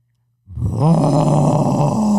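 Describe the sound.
A person imitates a tiger's roar, the school mascot, when asked what sound they would make as a tiger: after a brief silence, one loud, rough, growling vocal blast swells up and holds for nearly two seconds without fading.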